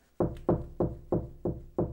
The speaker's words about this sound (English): Knock on wood. You gotta knock 5 more times, buddy. Or else it doesn't work.